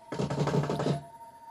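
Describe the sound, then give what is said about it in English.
A door being broken down: a rapid run of about eight heavy, thudding bangs in under a second, loud, then the pounding stops, leaving a faint steady hum. “I barely made my escape before they broke down the door.”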